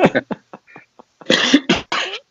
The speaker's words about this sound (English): He's anyway, still coughing it up.